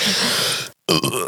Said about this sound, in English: It's a lot. Oh, God. One last big burp.